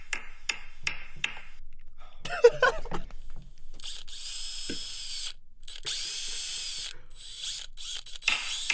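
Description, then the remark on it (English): A few sharp clicks and a brief rattling burst, then an electric toothbrush buzzing steadily, a high, whiny motor hum with short pauses, sounding much like a small power drill. “Yeah, I know you're not using power tools. It's my toothbrush.”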